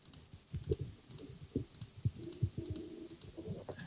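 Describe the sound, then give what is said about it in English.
A man types and clicks rapidly and unevenly on a computer keyboard, a steady stream of sharp taps with brief pauses, fairly quiet with no voices. “He's clicking intensely.”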